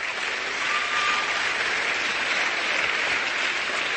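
A church audience applauds together during a preacher's sermon, a steady, loud wash of many hands clapping that holds evenly for several seconds with no voices standing out.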